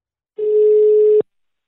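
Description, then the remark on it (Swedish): A single steady telephone ringing tone on an outgoing call to the sales manager of Altro, an international floor and wall systems manufacturer headquartered in England. It is heard alone for just under a second, then cut off abruptly by a click as if the line is picked up. “Vi blev ju naturligtvis nyfikna på dem, så jag ringde upp deras sales manager”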